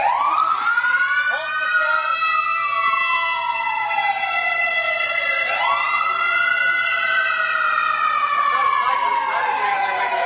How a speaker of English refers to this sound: Wait for the siren to go by.